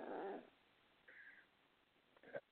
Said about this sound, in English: I'm just trying to stop a dog fight here on the couch.